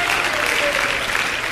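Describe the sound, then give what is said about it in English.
A worship crowd at New Life Christian Center claps steadily and cheers, a dense wash of applause with raised voices mixed in, loud and continuous throughout the short moment. “Somebody clap your hands unto the Lord and shout with a voice of victory and praise God.”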